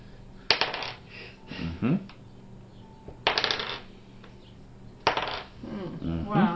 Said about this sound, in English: Why is he rolling dice so much?